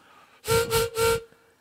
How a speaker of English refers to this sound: I want to try the harmonica.